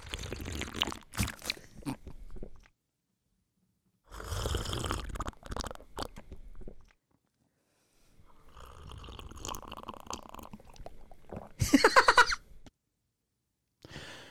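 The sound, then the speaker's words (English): Slurping of a drink in several noisy, airy bursts separated by short silent pauses, with a louder final gulp-like slurp near the end. No one speaks. “Slurping a drink?”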